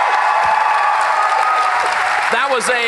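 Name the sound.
audience applause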